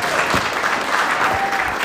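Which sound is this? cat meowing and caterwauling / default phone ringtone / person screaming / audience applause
audience applause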